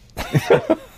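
A man coughs into the microphone, three quick rough bursts in a row, loud and dry, with no talking around them.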